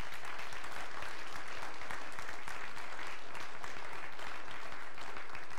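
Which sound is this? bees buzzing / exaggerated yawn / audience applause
audience applause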